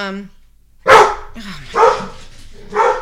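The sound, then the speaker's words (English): A dog barks excitedly as someone arrives home and opens the door, three loud, sharp barks about a second apart, with a brief trace of a voice just before the first bark. “so she opened the door, and the dog went batshit crazy.”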